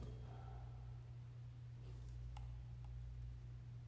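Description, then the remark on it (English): Two faint, sharp clicks, like a door latch, sound about half a second apart over a steady low electrical hum in a silent, empty building. “That sounds like a door.”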